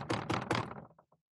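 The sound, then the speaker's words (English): Knocking on a door while trick-or-treating at Halloween: three loud, sharp raps in quick succession, followed by a few softer taps that fade away, with no voices. “So let's knock on the door.”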